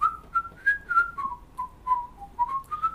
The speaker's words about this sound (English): Just …. Whistle. Yeah, do some whistling.